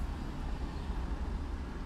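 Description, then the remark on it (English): A steady, low rumble of a truck starting to move through traffic, with constant road noise and no distinct horns or voices. “The truck is moving.”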